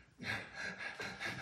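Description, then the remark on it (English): A voice imitates rapid, panicked hyperventilating, a quick run of breathy gasps in an uneven rhythm, fairly loud, with no words spoken. “And start breathing, you know, give them a paper bag so they can catch their breath again.”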